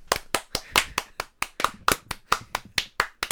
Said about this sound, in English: that's just applause. That's not what we're doing here. We don't deserve any of that.